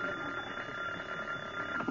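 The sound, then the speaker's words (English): A telephone rings with a shrill, continuous bell-like jangle that holds steady for the whole short clip, fairly loud, with no voices over it. “Oh, that darn phone.”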